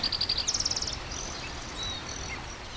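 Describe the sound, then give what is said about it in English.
A spotted towhee gives a quick, rapid trill of short high notes lasting about a second, followed by a few faint, thin calls against steady outdoor background hiss. “The nearby sound is a spotted towhee.”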